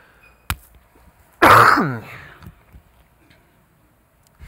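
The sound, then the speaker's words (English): A brief click, then one loud cough with a raspy, throat-clearing tail that fades over about a second. Quiet background follows, with no talking. “I got a cough. Can we get a mute?”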